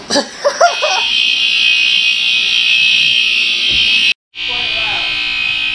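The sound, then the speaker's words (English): A smoke detector blares a shrill, steady high-pitched alarm tone that fills the room, cutting out for a split second before resuming. It was set off by smoke after someone lit the wrong stove burner while making mashed potatoes. A brief voice and laughter are heard at the start. “So now we have smoke and fire alarm.”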